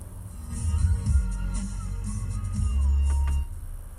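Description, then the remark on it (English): Muffled, bass-heavy music plays steadily from the stereo inside a car, the low end thumping and swelling near the end while faint melodic tones sit above it; no one speaks. “I'm trying to figure out how there's like music coming in my car right now.”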